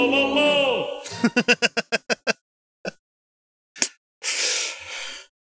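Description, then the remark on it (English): A voiced wind-up and a run of short, rapid vocal bursts lead into a sharp, explosive sneeze. A long, breathy hiss follows. The sneeze is fairly loud. “Bless you.”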